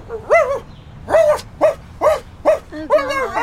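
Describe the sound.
A person loudly imitates a dog, letting out about seven quick, rhythmic barks, the last one stretched into a longer wavering howl.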